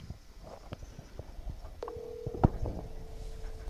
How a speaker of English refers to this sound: All right, we're ringing him now.